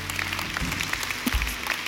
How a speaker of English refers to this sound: Come on and clap your hands all over the room.